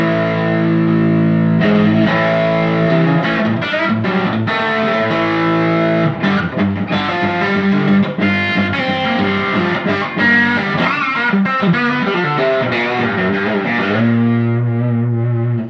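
An electric guitar with a Blackguard Telecaster-style pickup voicing plays a driven, slightly distorted riff of sustained chords and quick picked notes, loud and steady, with no one talking over it.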